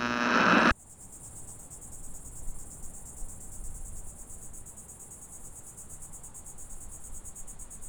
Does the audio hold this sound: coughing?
no